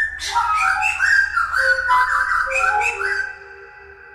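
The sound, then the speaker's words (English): A thrush sings bright, varied phrases alongside a musician, intertwined with steady, sustained whistle-like musical tones, the two weaving together continuously before fading out near the end. “Okay, so that was his encounter with a thrush.”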